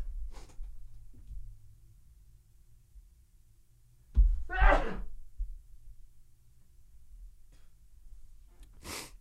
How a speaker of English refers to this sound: Hang on, I'm going to sneeze again.